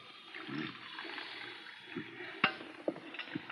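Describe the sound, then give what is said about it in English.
Black coffee, with no cream or sugar, pours steadily into a cup and spills over with a soft, continuous splashing trickle, followed by a few light clinks and taps near the end. “Look out, you're spilling the coffee.”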